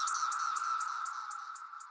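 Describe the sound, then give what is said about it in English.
A dense chorus of periodical cicadas, emerging in the eastern United States, forms a loud, steady, whining drone of about 96 decibels, with a faster, higher pulsing chirp repeating throughout. No voices are heard. “That's the music of a cicada symphony.”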